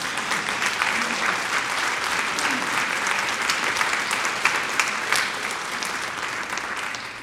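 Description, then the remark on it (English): An audience at a church service applauds steadily for about seven seconds to welcome a person newly received into the church, a dense, even wash of clapping from many hands with a few sharper claps popping out near the end. “You can give her a applause.”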